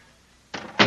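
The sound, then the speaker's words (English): A cell door swings shut, a brief scrape or latch sound followed a moment later by a firmer, louder thud as it closes. No one speaks. “Please close the door behind us.”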